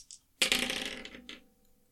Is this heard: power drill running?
no